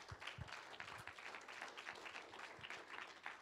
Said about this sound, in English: Can you help me give him a round of applause?